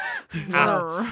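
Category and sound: vocal imitation, person imitating a growl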